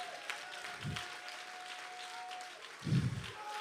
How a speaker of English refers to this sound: Clap your hands right now and give the king praise.